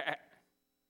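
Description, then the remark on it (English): A person makes a single short, nasal bleat, imitating a sheep, with a quick loud onset that fades within half a second. The voice is heard alone. “Children, go home today and just hang out and pretend like you're sheep.”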